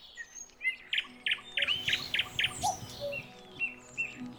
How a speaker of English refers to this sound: we wove together recordings of some of the UK's threatened bird species into a dawn chorus of our own. So here's the cuckoo, skylark, song thrush, and the nightingale. We hope that we'll still be hearing these birds in the years to come.